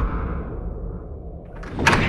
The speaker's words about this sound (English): A click. A solid thump of a click. It's locked me in. The mechanism should release the outer doors now.